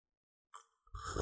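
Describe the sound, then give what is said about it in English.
A slurping sip of a hot toddy (whiskey, lemon juice and hot water with a cinnamon stick): a short airy intake followed, after a brief pause, by a louder, fuller slurp, with no talking. “Oh, is this going to be an ASMR podcast now? You got to slurp into the microphone.”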